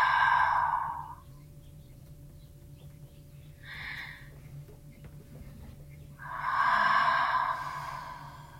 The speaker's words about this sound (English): So if you inhale through your nose, and then you can open mouth exhale. And just like that, two more times, inhaling through your nose. This time maybe pausing at the top and sipping in a little more air, and then exhaling through your mouth.